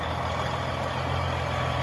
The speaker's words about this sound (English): Can you hear that? It's just a truck making noise. Just want to make sure everybody can hear it.